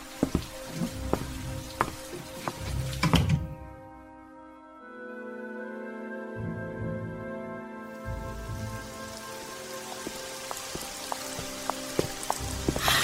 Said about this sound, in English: It's raining again. Why is it after September it just seems to rain all the time?